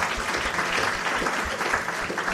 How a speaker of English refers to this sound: To our sound team, we appreciate what you have done. Give them a round of applause.